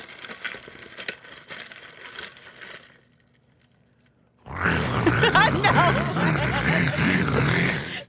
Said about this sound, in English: This is the straw of my Stanley Cup, and I'm going to swirl my drink on the inside so you hear the ice.